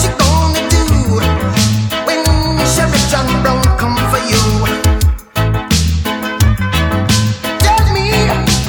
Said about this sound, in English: we're listening to the Cops theme song.